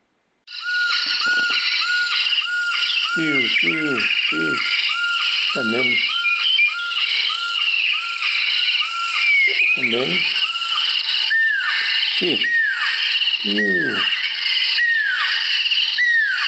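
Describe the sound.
A bird's very loud, explosive calls that carry a long way ring out repeatedly, each a sharp downward-sweeping 'pew' note, coming in bursts over a dense, constant chorus of background calls, with a brief spoken word.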